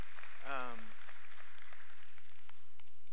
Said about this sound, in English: Man, you can encourage him. A real authentic clap on that.